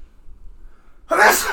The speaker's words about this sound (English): Bless you. COVID. Sneezing isn't a symptom of COVID, you moron.